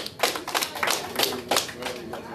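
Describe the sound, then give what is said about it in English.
Hands clapping for the Chiefs winning the Super Bowl, in a quick, slightly uneven rhythm, with sharp bright claps repeating for a couple of seconds over a soft, murmuring background. “So clap it up.”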